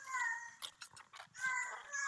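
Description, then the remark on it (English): A person imitates a cat, giving two long, drawn-out meows with short breathy, scratchy noises between them. “Do you mind if I transform back into a cat?”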